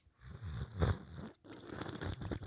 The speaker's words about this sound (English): Can I slurp an ASMR? You can.